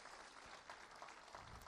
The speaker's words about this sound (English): So I put it in my notes. I'm going to ask you to do it again. Give Nani an applause of encouragement right now.